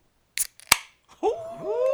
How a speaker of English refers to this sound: Oh, there's Coors Lights being cracked over. Like, Hey, crack that, crack it, crack it. Hey, hold on. Let's see the good for it. I'm putting the mic to the can.